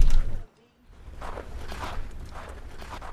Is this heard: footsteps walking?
yes